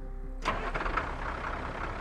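A farmer's truck engine on a farm in Skidmore in 1976 cranks and catches about half a second in, then settles into a steady mid-range rumble that runs to the end with no voices.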